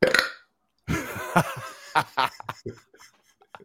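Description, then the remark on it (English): A loud, drawn-out burp forced into the shape of the word "Caliban", with the "Cal" part burped, followed by a few short bursts of snickering laughter. “Say Caliban, but burp the Cal part.”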